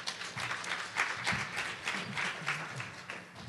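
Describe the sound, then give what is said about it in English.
An audience applauds the two speakers of a talk in a steady, dense round of clapping that holds at an even, moderate level for a few seconds, with a faint murmur of voices underneath. “Give both of our speakers a last round of applause.”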